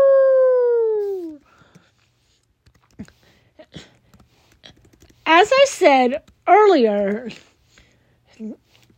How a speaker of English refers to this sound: Bark, bark, woof, woof, arr!